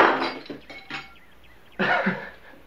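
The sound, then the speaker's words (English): A small glass vase shatters: a sharp crash with bright tinkling shards ringing out, then a second burst of clinking glass a moment later as pieces settle. “And he breaks what he calls a vase.”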